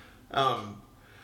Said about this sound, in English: And, God, I'm sorry to be sniffling, but...